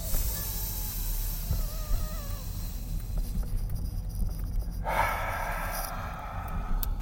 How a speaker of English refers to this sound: And you'll hear it. You'll hear me. I can't take long breaths like this one. This one's long. Listen. Count it. Ready? Go.